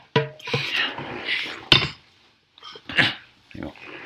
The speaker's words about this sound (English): Can I have the rain stick?